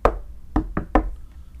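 Four solid knocks on a wooden surface: one knock, a short pause, then three more in quick succession, with no talking.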